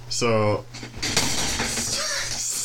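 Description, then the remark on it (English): A rickety wooden chair creaks and knocks as it's picked up, a short strained groan followed by clattering handling noise, with voices murmuring in the background. “It's a real rickety chair right there.”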